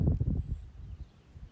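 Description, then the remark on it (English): Wind blows across an open beach looking toward Haleakala and across the water from Little Beach at McKenna, buffeting the microphone with low, rumbling gusts that are strongest at first and then ease into a softer, steady rush. “I am sorry if it's a little windy”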